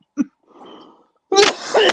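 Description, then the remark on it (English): A man clears his throat with a short rasp, then a quieter gravelly rumble, followed by a loud, harsh cough burst. “Let him cough first.”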